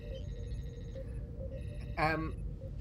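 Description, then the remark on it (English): Electronic sonar-like pings from a device being tested with small amounts of Trillium D pulse steadily over a dense, crackling hum of interference, then a louder warbling burst cuts in about two-thirds of the way through before fading back into the static. “even though the device seems to be working, the more you test it with small amounts of Trillium D, the more you're already getting interference back from some of the pings.”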